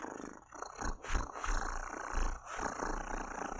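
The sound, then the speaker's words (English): A person imitates a cat's purr with a steady, raspy rolling rumble that pulses slightly and carries on without pause. It is fairly loud, with no talking. “making kitty cat purring sounds.”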